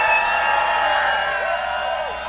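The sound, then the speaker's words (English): A live audience cheers loudly and steadily as the crowd votes by cheering for the winner of round three, a dense wash of many voices shouting and whooping together with a few higher whistles rising above the roar. “That's a pretty pretty good cheer.”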